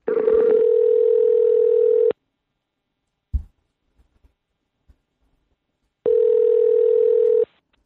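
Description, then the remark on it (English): A telephone ringing tone buzzes twice, each a steady two-second drone, separated by a pause with a dull thump and a few faint clicks. No one speaks. “Let's give her a buzz.”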